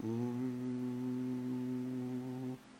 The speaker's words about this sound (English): But what you're noticing about the humming is that everyone does it in their own way. Everyone has their own tone, their own pitch, their own timbre of your voice.